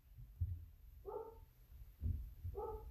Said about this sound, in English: the dog's barking.